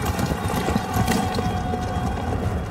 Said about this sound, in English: A lot of horses freaking out, basically, and screaming.